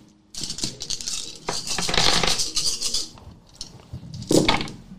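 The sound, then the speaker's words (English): A big handful of dice, a large dice pool rolled in a tabletop role-playing game, clatters and rattles across a hard surface in a dense, bright burst of clicks, settles briefly, then a final loud rattle of dice rings out near the end. “Have you ever seen a dice pool that big?”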